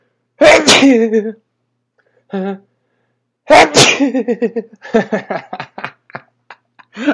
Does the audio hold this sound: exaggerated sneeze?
yes